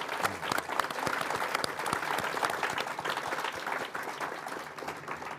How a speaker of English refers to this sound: Yeah, I'll clap for that.